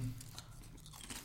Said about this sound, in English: So it's all you hear right now is us crunching.